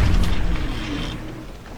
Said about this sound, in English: Oh, there's the lion's roar.